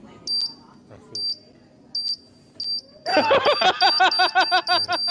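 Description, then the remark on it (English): A phone text message notification chime goes off: four short, high electronic beeps spaced about a second apart, then a louder, rapid run of chirping tones that fills the last two seconds. “My phone, like, goes off and someone texts. I have, like, weird, like, notifications.”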